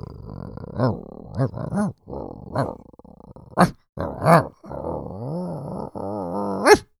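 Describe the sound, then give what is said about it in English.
A person imitates a dog, as an announcement addressed to dogs, with a run of loud growls and short barking yelps, voiced in uneven bursts with brief pauses between them. “but this is an important public service announcement to dogs.”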